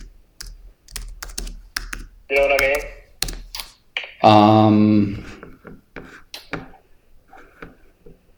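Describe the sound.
Rapid, uneven clicking of computer keys as someone searches on Google runs through the whole stretch, sharp taps in quick bursts, while a voice speaks briefly over the typing.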